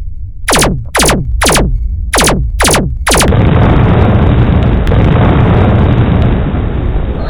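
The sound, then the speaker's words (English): Six rapid descending zaps, like sci-fi torpedo shots, fire in quick succession, then a loud, sustained rumbling explosion as torpedoes hit a ship, roaring and crackling steadily for several seconds without fading. “Direct hit to drive coils of ship 2.”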